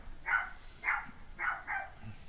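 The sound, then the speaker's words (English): A chair squeaks four times in quick succession, each short, high, whiny creak sounding much like a small dog yipping, moderately loud with no talking over it. “Your chair sounds like a dog now.”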